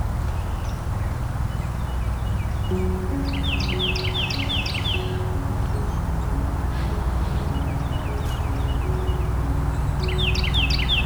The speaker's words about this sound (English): Hearing the triple ring of golden crowned kinglets as well.